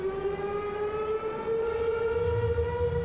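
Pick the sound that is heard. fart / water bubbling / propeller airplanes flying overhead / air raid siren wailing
air raid siren wailing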